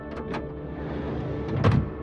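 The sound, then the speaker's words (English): A vehicle rolls over gravel: a steady low engine rumble with scattered crunching bursts, growing louder and rougher near the end. No one speaks. “A while later, I hear a vehicle drive up the gravel, maybe two of them.”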